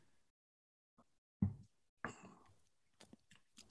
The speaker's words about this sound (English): First sip is always the best. What do you think of the Raven? It's got about a 10-foot head on it here. It's amazing. There's so much froth on top, but I got through it and it's absolutely delicious.